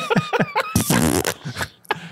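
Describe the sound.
A buzzy, sputtering mouth-made fart noise, a blown raspberry lasting about half a second, made in disapproval of a joke, surrounded by short bursts of snickering laughter from voices.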